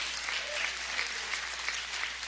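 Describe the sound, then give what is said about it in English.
An audience at a sermon breaks into steady applause, many hands clapping in a dense, even patter that holds at a constant moderate level for the whole stretch, with no voices over it. “You're missing a good place to clap right there, folks.”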